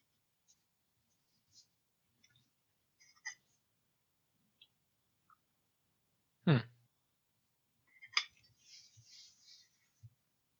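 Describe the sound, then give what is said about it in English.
Scattered small clicks and taps, then two sharp clattering knocks a couple of seconds apart, the second trailing into a brief rattle, as two purple dice are rolled for an education roll in a tabletop game. Fairly quiet, with no talking. “And just make it two purple dice.”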